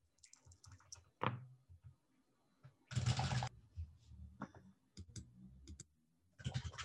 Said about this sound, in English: I rolled three dice and I got one blank and this.